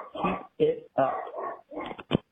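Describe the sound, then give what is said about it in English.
A dog whimpers and lets out a few short barks in quick, uneven bursts, fairly loud, with brief pauses between the yelps. “I think the dog wants to go out.”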